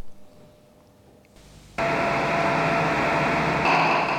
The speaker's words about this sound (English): So there you hear the neuron firing as the monkey grasps the grape.